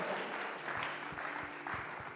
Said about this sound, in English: Come on, if you are clapping your hands, clap it well.